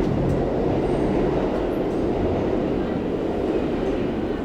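A steady, loud low rumble of a New York City subway train in motion in Manhattan fills the whole stretch, with a dense roar and faint metallic clatter, no voices rising above it.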